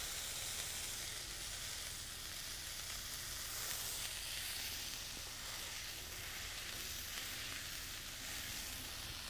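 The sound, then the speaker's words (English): Steady sizzling of a smashed burger patty frying on a hot pan, a dense crackling hiss that runs unbroken throughout with no one speaking. “It's a lot of very scary sizzling noises.”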